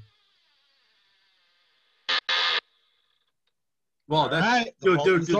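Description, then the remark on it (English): An unoiled door creaks open with a thin, high squeal, followed by a louder, groaning run of wavering creaks near the end. No speech is heard. “That door sounded like it had no... No the oil door on it.”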